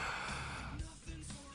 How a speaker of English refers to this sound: Now, here we go with the heavy breath.